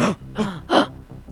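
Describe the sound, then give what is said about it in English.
A person gasps sharply several times in quick succession, three breathy, voiced intakes of air, fairly loud, with no talking around them. “Gasp.”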